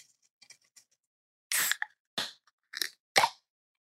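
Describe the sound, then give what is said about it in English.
A few faint clicks, then four short, splashy glugging bursts in an uneven rhythm as beer pours from a bottle into a stemmed Orpheus anniversary glass. No one speaks. “And then some pours. Nice pour.”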